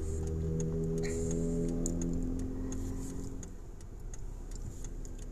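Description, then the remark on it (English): Steady low engine drone and road rumble fill a car cabin while driving to work in West Virginia at about 10:41 p.m. on January 8, 2020, with a faint regular ticking, likely a turn signal, clicking above it. Nobody speaks. “Live from the car studio.”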